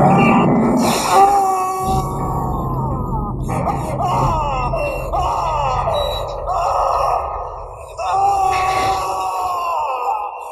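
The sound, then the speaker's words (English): A man lets out loud, agonized screams and strained groans while being hooked, his voice wavering and cracking through several drawn-out cries with only brief breaks, over a low rumbling background. “Let's end with this fantastic scream from the last killing in Cobra on a hook”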